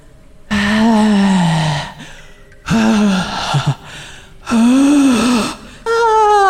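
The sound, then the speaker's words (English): Four loud breaths rasp straight into the microphone during a sound test in a vocal booth, each a long strained inhale or exhale with a voiced, groaning edge, separated by brief pauses, sounding heavy and desperate. “Can you breathe heavily into the microphone?”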